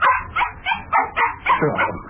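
A dog whimpers and yips excitedly, a quick run of about eight short, high-pitched bursts with brief gaps between them, as it jumps up and down, eager to go for a walk.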